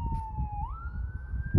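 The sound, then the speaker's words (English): An ambulance siren wails steadily, its tone holding, then sliding up to a higher pitch, over a low rumble of road traffic. It sounds fairly loud, with no talking. “Oh my God, the cops are coming. Oh, that's an ambulance.”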